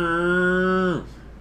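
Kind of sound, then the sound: animal, cow mooing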